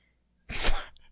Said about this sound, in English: Bless you.